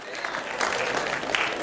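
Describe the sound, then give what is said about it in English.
A crowd at a preacher's sermon claps together in answer to his call to clap: a dense, steady patter of many hands, fairly loud and sustained for under two seconds, with a faint murmur of voices mixed in. “Clap your hands if you believe it tonight.”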